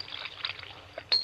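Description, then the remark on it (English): A short burst of soda water poured into a drink in a glass, a steady hiss with a couple of brighter splashy spurts, ending in a sharper fizz. “And now, a little soda in mine.”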